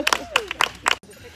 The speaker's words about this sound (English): That's my crazy dog over there.